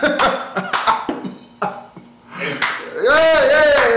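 A handful of sharp, uneven hand claps ring out for a couple of seconds, then a loud voice with a wavering, sliding pitch takes over, like a cheer.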